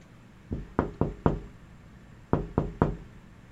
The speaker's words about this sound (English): I don't know, do you knock on the door at a hospital? Felt better than barging in.